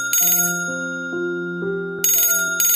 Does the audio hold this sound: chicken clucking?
no